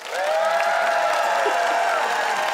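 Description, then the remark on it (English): A studio audience votes by applause for a contestant's argument against cowboy hats. The crowd bursts into steady applause with cheering and whoops mixed in, holding at a loud, even level for a couple of seconds without letting up. “Audience, it's up to you to pick a winner. By applause”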